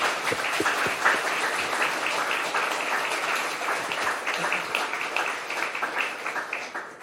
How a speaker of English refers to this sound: but before we do that, if you could just give our three speakers a big round of applause.